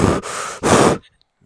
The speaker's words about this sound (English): because you're breathing into the mic.